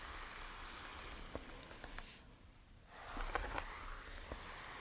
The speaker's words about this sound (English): Brushing with the Russian brush.